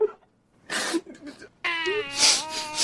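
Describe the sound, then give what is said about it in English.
A voice imitates crying: short breathy sniffling bursts, then a wavering, whimpering wail that rises and falls in pitch, moderately loud and heard alone. “What we do is little sister, little sniffles.”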